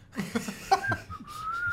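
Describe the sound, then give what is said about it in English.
A hunchbacked man digging in the ground with a rusty shovel beside a mansion whistles a tune to himself badly: thin, wobbly notes that slide and waver in pitch, preceded by a few breathy, airy attempts, at moderate volume. “And he's poorly whistling some tune to himself.”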